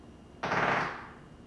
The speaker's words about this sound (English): Is there a firecracker there? Oh my god! Good lord. Oh my god.